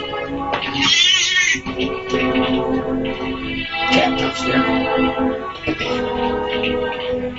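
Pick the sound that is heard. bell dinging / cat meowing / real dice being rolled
cat meowing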